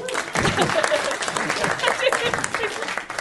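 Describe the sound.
An audience claps steadily, a dense, bright patter of many hands filling the whole stretch at full volume, with some voices mixed into the applause.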